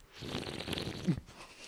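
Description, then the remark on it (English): A soft, noisy slurp of someone sipping a drink, lasting over a second, with a brief sharper gulp near the end before it fades. “All right, I'm taking my sip.”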